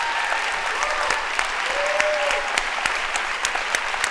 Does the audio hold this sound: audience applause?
yes